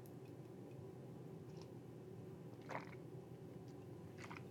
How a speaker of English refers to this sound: While I have a cup of coffee, while I have a little sip.